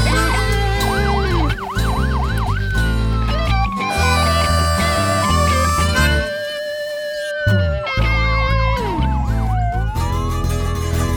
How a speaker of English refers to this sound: The red lights flashed. The siren wailed. Captain Blauard screeched the car into a U-turn and roared down Bridge Avenue toward Main Street.